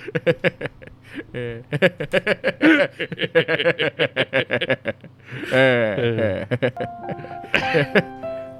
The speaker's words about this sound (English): You just hit the bell with your book. I did.